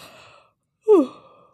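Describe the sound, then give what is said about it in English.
A single voiced yawn with a falling, drawn-out tone that fades into a breathy exhale, following a moment of quiet after some soft breathing. “I am yawning so much today.”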